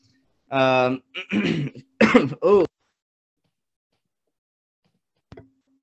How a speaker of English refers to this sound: You're gonna have to pardon that cough there.